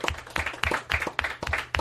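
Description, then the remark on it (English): A room full of people applauding, a dense, steady patter of many hands clapping at once at moderate loudness, with no voices standing out. “I love that even everyone applauded because, you know, not only was that heartwarming, like I wanted it to be, but it's harder to do.”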